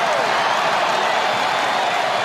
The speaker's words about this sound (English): They stand and applaud as he strolls past these fans. And now he waves his arms around, encouraging them to get even louder.